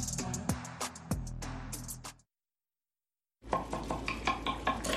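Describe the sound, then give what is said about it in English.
Kitchen clatter of a meal being made: a spoon stirring in a pot, clinking dishes and utensils, with sharp metallic knocks, a sudden silent gap, then more busy clinking and scraping. “These are the sounds of a dinner.”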